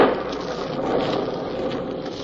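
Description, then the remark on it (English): Steady rain falls in a continuous, even hiss that neither builds nor fades, moderately loud, with no voices or other distinct sounds. “Witherall doesn't know about that afternoon in Dick's office, that rainy afternoon 5 years ago.”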